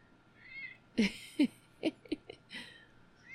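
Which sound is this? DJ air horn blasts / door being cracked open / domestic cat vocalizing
domestic cat vocalizing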